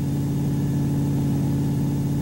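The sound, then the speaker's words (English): A car engine with its oil drained runs steadily at idle, a constant low droning hum with a whirring edge that holds unchanged throughout, fairly loud, with no voices. “Should the engine have seized already?”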